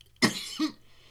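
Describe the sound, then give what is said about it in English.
A harsh cough bursts out after smoking, followed a moment later by a shorter, throaty second cough, then quiet. No one speaks. “Do you cough each time,”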